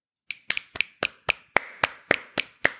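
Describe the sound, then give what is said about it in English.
About ten sharp hand claps in a steady, fairly quick rhythm, crisp, like one person clapping in applause, with no talking. “And applause, round of applause round for of you, applause.”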